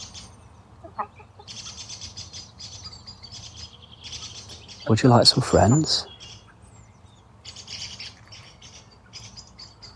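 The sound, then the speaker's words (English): Hens cluck and murmur softly in the chicken run of Chicken Town in the evening, short repeated calls continuing throughout over a low steady hum, while a man standing outside the run speaks briefly midway to say good evening. “I'm stood outside the chicken run now, just saying a late good evening to the ladies of Chicken Town.”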